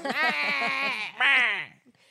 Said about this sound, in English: Maybe it was like the goat, like it was the sound effects were the greatest. If you would have gotten some, maybe like the goats yelling like humans, yeah, then maybe that would have worked